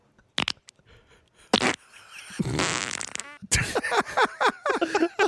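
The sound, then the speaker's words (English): A series of wet, sputtering fart sounds, some short bursts and a longer squelching stretch in the middle, with a spluttery, empty-ketchup-bottle quality, fairly loud and with no talking. “It almost sounds like an empty bottle of ketchup.”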